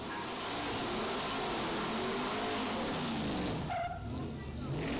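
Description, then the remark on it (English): A big pickup truck, probably a Dodge Ram, doing a burnout on a flag: an engine roars steadily with screeching, skidding tires for several seconds, loud, with muffled voices in the background. “Oh my God, that was a big truck with probably a Dodge Ram.”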